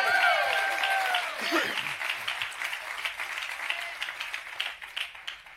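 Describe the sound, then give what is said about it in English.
An audience gives God a hand clap, breaking into sustained applause, many hands clapping in a dense, steady patter that holds for several seconds, with a few voices calling out near the start. “Come on, give God a good hand clap today.”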